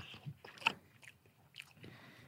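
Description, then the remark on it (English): A bite into a soft, moist Indian donut, with wet squishing and smacking chewing sounds that peak in a sharp crunchy moment, then quieter mouth noises trailing off. “It sounds good on a podcast, that's for sure.”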